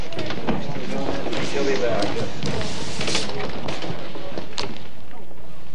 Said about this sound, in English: Oh, would someone close the door, please?